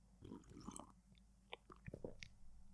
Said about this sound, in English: Listen to Isaiah chapter 9, verse 6, after I take a sip of my coffee.